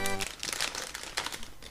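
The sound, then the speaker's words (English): Scratchy crinkling of plastic action figure packaging being sliced and torn open with car keys, in a few quick rustling bursts after a brief voiced sound at the start. “A thumbing and cutting with car keys.”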